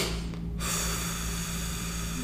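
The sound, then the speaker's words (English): Breathing in the physiological sigh technique: two quick sniffs in through the nose, then a long, steady, breathy exhale that lasts a couple of seconds, with no talking. “There's this thing called the physiological sigh that Andrew Huberman talks about, where it's like two quick sniffs in and a long exhale”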